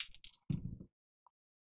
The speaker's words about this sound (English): All right, let's roll. I'll roll 2 dice.